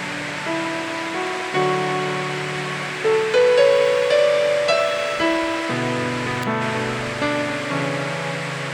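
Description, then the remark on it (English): A steady, heavy hiss of rain on a roof runs throughout, mixed with sustained keyboard chords that shift every second or two. No one speaks. “If the rain is coming, then you can shift tight more.”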